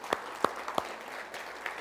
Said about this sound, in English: Church, can we just thank God, give him a clap offering this morning?